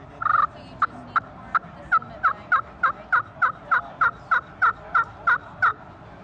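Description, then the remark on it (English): A slate-surface pot turkey call yelping in a steady run of about sixteen short, raspy, mid-pitched notes, evenly spaced and fairly soft, with no talking over it. “The slate surface is going to be softer.”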